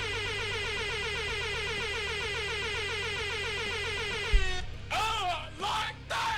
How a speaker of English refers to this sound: That was like, that was 200 air horns for 200 episodes of Blue Harvest.